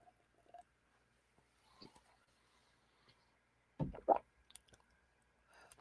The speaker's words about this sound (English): I need some water, you guys. I'm sorry. Let me have a drink of water here. I apologize.